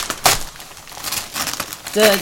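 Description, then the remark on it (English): Paper packaging is crinkled and ripped open by hand, without scissors, in several loud bursts over a couple of seconds, with a brief voice near the end. “No, we don't actually have any scissors. We don't open it this way today. Yeah, let's just do it that way.”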